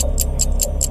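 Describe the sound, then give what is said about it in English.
A steady 15-second countdown timer ticks about four or five times a second, each bright, sharp tick evenly spaced over a low background hum, with no talking. “15 seconds on the clock.”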